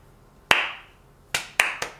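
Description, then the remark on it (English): A slow clap given by the character Andy: one sharp hand clap, a long pause, then three more claps coming a little faster, each ringing out briefly. No one speaks. “Miles sits back, proud of himself, and he hears a slow clap.”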